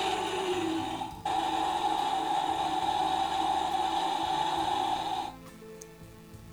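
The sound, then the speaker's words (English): A Godzilla-shaped humidifier with LEDs runs with a steady, even hiss and a constant mid-pitched hum, preceded by a brief rising tone and a short dip, then cuts off abruptly near the end, leaving faint low rumbling. “For our listeners, that's a humidifier.”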